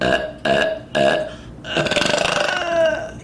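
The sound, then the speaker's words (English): A woman burps three short, loud burps in quick succession, then a longer drawn-out belch that rumbles on for over a second, unaccompanied by talk; the burps give her rating at the end of a review. “She goes back and burps another set for her rating.”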